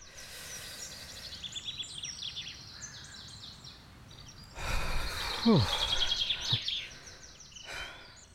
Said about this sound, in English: Listen to the birds for a minute.